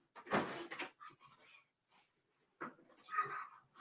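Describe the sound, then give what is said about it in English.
A door swings shut with a solid thump, and after a brief pause there are some clicks and a short scrape as it is locked. No one speaks. “Lock the door back.”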